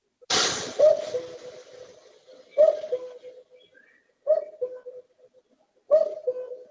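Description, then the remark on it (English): A cuckoo bird repeats its two-note descending call four times at a steady, unhurried pace, clear, with a brief rush of noise at the very start. “Here's what the cuckoo bird sounds like so that you just kind of have an idea.”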